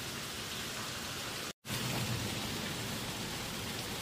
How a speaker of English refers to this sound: Do you remember the sound of the rushing water? This is where I was. There's the water.